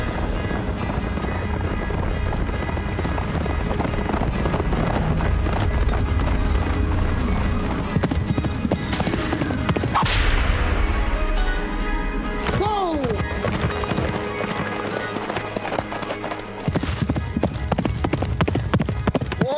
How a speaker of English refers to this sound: When you see a black man on a horse going that fast, you just gotta let him fly. You right. That's a horse horse. That is a horse horse.